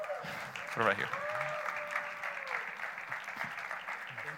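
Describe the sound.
An audience at Iglesia JTP claps steadily in a dense, sustained wash of applause welcoming a guest, with a brief whistle and a faint voice cutting through near the start.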